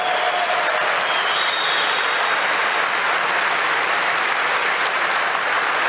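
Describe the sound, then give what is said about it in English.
A crowd claps and applauds steadily for about six seconds, a dense, even wash of many hands at constant loudness with no voices over it. “His little audience of clapping seals.”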